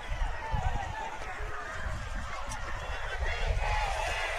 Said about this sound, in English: Glenwood crowd, loudest they've been all night. Haven't made a ton of noise, but they're making some right now as Lee Scott 45 seconds away.